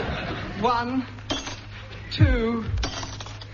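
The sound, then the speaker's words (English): A short tune tapped out on three ordinary glasses of water, with a few bright clinks and ringing tones rising and falling in pitch, moderately loud with no talking. “Now a little melody using 3 ordinary glasses of water.”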